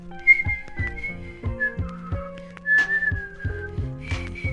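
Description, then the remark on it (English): Someone whistles a wavering, sliding tune up high and steady, over a backing of low plucked bass notes and soft rhythmic knocks, with no talking. “It's annoying. Please stop whistling.”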